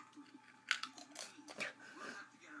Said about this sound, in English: Apparently, I'm not chewing very thoroughly because there's crumbs everywhere.